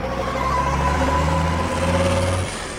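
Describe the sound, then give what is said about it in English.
A flues truck's engine revs loudly, its low rumble holding steady with shifting tones before dropping away near the end as it pulls off from a flues dispenser. The truck is the shape-changing supervillain Mighty Mila in transformed form. No voices. “She's transformed into a flues truck! And she's getting away with my flues!”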